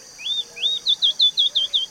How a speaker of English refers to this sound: sound is really 100% focused, and you can record that. In some situations, you need to target the parabola to the branch instead of the bird, because the sound is bouncing on that branch and is focused better than if you are going to target the bird.